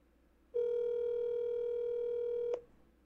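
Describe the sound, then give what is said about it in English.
A steady telephone dial tone, heard while placing a call, hums for about two seconds at one unbroken pitch, fairly loud, then cuts off abruptly with a faint click. No one speaks. “But okay, we're gonna make a call.”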